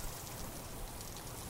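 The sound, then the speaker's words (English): Steady rain falls in a soft, continuous hiss, an even wash of drops with no pauses and no voices. “We just coaxed Mike home in the rain and went our separate ways after that.”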